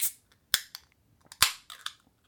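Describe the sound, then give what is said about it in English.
A can of Pumpkindelic pumpkin beer from Tripping Animals Brewing cracking open: a few sharp, bright metallic snaps spread over two seconds, each trailing into a short hiss of fizz, with no voices. “What a beautiful crack.”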